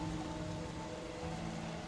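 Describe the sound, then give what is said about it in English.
Steady, enveloping wind and rain roar continuously at a low level, a dense wash of noise with a faint sustained hum beneath it and no voices. “And all you hear is, like, the wind and rain howling all around you, and your compatriots who are huddled up close.”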